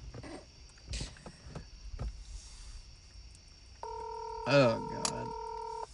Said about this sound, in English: answer the phone. He's gonna make my fucking phone bill. He's not gonna answer.